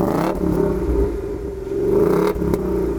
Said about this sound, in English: Now that's from a non-turbo petrol engine, albeit a big one, but that's still pretty good. And of course, a great sound.